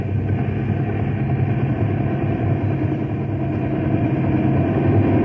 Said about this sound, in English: The wind's sure tossing that copter around.